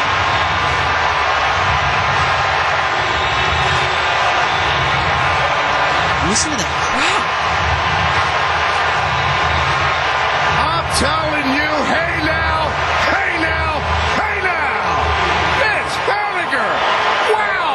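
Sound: baseball stadium crowd roaring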